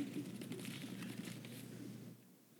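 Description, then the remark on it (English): Soft, scattered rustling of Bible pages turning as listeners look up Hebrews chapter 1, a few overlapping flips, fading toward the end. No one speaks. “Fewer pages turning this time.”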